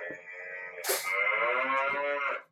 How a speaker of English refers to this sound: Is that a cow? Yeah. That's a cow